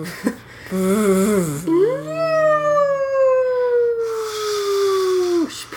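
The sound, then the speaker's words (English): A person's voice imitates a whale song, a long, loud gliding wail that rises then slowly slides down, sounding almost like a siren, preceded by a short wavering moan. “That was my whale sound. Kind of sounded like an ambulance.”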